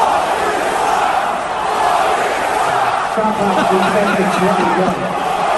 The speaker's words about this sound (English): That's some pretty good tens of thousands of people chanting Boston sucks. And then the organ player, all right. Can I hear the beginning of that again? It's pretty good at the beginning there.